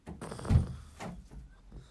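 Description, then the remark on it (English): A door opens with a dull low thump and a brief rattle of the handle, followed by a softer click and faint shuffling. “Well, I'm gonna open the door.”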